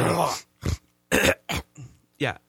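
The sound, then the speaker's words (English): A man clears his throat in a series of harsh, phlegmy hawking bursts, about five or six rough rasps in quick succession with short pauses between, fairly loud. “It's like he's clearing his throat, like he's about to hawk something.”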